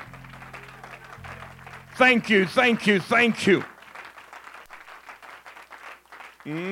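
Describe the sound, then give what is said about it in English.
An audience gives a hand clap of praise as people are being seated: a steady wash of hand clapping that continues after a man speaks loudly over it, with low sustained organ-like tones at the start. “Come on, let's give him a hand clap of praise right as you're being seated.”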